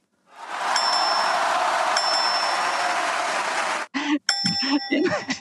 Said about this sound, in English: apparently Alice Rebecca's fallen over on the bell